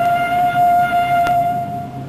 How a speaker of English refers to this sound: Faintly from a distance, there comes the sound of a departing train.